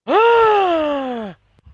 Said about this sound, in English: Gasp. And I wonder why.